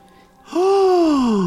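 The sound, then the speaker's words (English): After a brief quiet moment, a single loud, dramatic gasp erupts and stretches into a drawn-out voiced sound, its pitch rising and then sliding slowly downward. “Gasp.”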